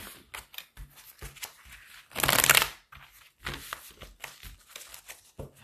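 Crisp shuffling of a deck of relationship cards geared to love connections: a run of light flicking and tapping, then a dense, louder riffle lasting about half a second, followed by more scattered card flicks.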